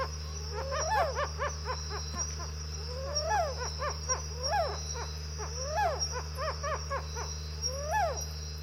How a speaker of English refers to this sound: It's the white-browed owl, Athene superciliaris. The recording has a low-frequency hum that I think is a generator. I tried to filter it out, but you can still kind of hear it. Anyway, this is the white-browed owl in Madagascar.